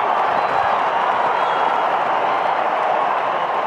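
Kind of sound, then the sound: crowd, stadium crowd cheering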